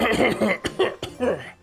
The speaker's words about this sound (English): He kind of coughs up on the top of his balcony.